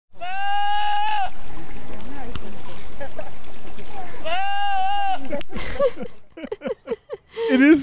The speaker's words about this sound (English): But I think this is a Pyrenean goat. They have long hair, a mop head, and those curly twisted horns. And here's another video of a goat screaming.